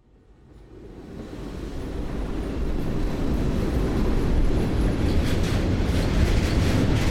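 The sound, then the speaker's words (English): A loud, steady low-frequency roar swells up over the first couple of seconds and holds as a train hurtles down the tracks very close beside a strip club, shaking the locker room benches, with a rumbling, rattling texture and no voices. “A train hurtles down the tracks beside the club, so close the benches in the locker room shake.”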